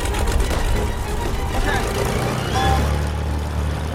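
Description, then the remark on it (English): A biplane engine roars into life: a loud, steady, rough rumble that deepens and thickens partway through as it settles into a heavier drone. “Biplane. Oh, shit. he can hit the engine.”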